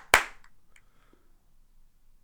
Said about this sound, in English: I'm going to do a couple of claps so I can mark where that is when I go to edit.